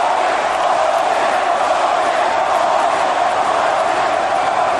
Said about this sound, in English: They were cheering for Hogan at WrestleMania. He's right about that. They're doing it again.